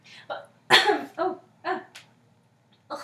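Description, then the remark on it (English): A coughing fit brought on by excitement: several harsh, rapid coughs in an irregular burst, the second the loudest, then a short pause before one last cough. No one speaks. “I got too excited and I started to cough everywhere.”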